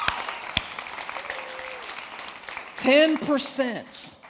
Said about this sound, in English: Give God a hand clap. It's great.